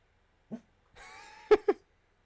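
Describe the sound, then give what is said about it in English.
A dog at the door gives a brief whine followed by two sharp barks in quick succession, with no one talking. “You're going to bark at the door now.”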